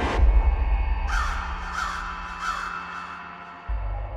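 A crow caws three times in a steady rhythm, each call harsh and raspy, on a hot, sunny day near shards of a shattered hand mirror arranged on a low, wide stump, over a constant low rumble that swells briefly near the end.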